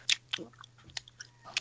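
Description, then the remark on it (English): A person chewing with mouth open: wet, smacking chewing sounds, about five loud crunchy bites and lip smacks in an uneven rhythm over a low steady hum, with no talking. “Stop chewing with your mouth open.”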